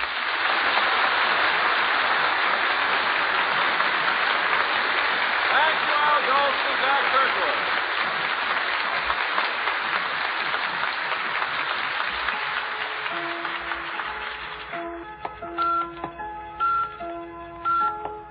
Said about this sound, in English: You just heard of time and its flight. The electrical impulse that produced that steady beep, beep, beep had its origin in the observatory of the Elgin at Elgin, Illinois.